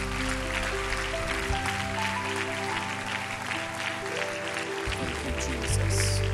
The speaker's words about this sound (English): Would you give the Lord a hand clap right now?